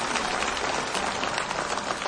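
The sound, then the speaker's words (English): A crowd at a band's performance applauds the band's mandolin player, clapping steadily in a dense, continuous wash of many hands at an even loudness with no voices heard over it. “If you would please give him a round of applause.”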